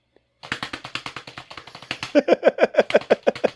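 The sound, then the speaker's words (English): Steady, evenly spaced hunt-and-peck key taps on a keyboard, roughly five per second, growing louder partway through as a low hum-like voiced tone joins the clicking in the second half. “So he's very efficiently hunting and pecking at the keyboard.”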